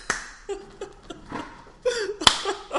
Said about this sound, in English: Man, I'm happy that I could make my hand solid to actually make some sound when we slapped hands.